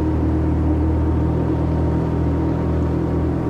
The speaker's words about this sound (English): Hey, whoever's controlling that insanely huge remote control boat, knock it off!